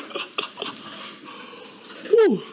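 A dog gives a single short, high whine that slides downward near the end, after a few soft, breathy puffs like panting, over a faint, steady background.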